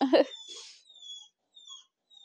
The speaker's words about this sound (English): My puppies are crying at me because they want out of their kennel.